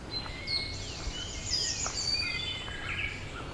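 An eastern towhee sings in the morning in the Dundas Valley amid a busy chorus of other birds, its clear whistled phrases overlapping high chirps and trills against a steady faint background hiss.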